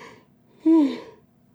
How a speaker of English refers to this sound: We got 10 yawns. Yeah, give it up for 10 yawns.